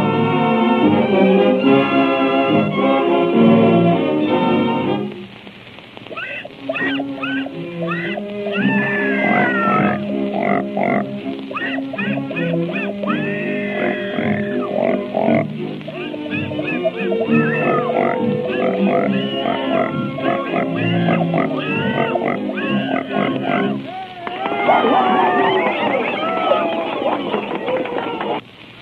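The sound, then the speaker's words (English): Pigs squeal and oink over and over for about half a minute, loud, the high pitched squeals sliding up and down in a busy, almost musical jumble. “Presenting Mr. and Mrs. Patty Pig.”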